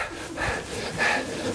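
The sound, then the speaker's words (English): A man of about 50 pants heavily like an old dog after going up and down stairs, two or three breathy, raspy puffs, with no talking. “And I'm panting like an old dog.”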